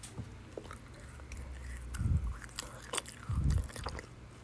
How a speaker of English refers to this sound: I don't like the sound of someone eating. Sorry, it's so loud.